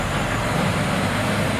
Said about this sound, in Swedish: Hej lastbilen.